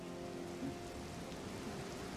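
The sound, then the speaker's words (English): Steady, fairly quiet rain patters down continuously onto a surface, a soft hissing wash with a low, faint hum beneath it and no voices. “They're mostly trying to cover themselves up as the rain is starting to come down.”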